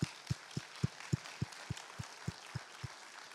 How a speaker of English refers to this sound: Clap for those ladies, huh?